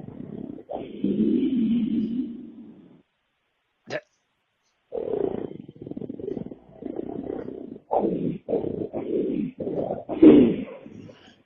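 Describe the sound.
A man growls like an animal in long, rough, low bursts, pausing briefly, then delivering a series of choppy snarling growls that grow louder toward the end.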